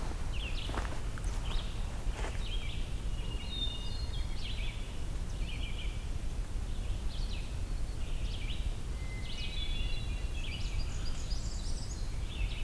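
A Blackburnian warbler sings thin, very high-pitched phrases of quick repeated notes that climb even higher at the end, repeating several times over a steady low rumble and soft crunching footsteps.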